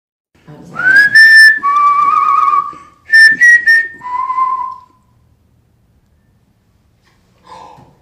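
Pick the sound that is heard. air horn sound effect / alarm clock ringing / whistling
whistling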